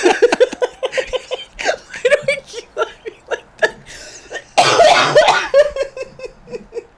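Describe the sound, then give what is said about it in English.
A loud coughing fit from choking on a drink that went down the wrong way: a long string of rapid, sputtering coughs and gasps, with one harsh, drawn-out hack in the middle before the choking coughs taper off. “It's because I choked. It really did go down the wrong way earlier.”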